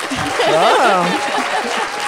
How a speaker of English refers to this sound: Let's hear the applause for the Emily Dickinson recommendation.